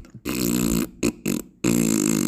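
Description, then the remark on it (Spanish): A series of loud, buzzy fart noises, likely voiced by mouth: one long rasp, two short blurts, then another long drawn-out one, with no talking. “El gato se echa pedos.”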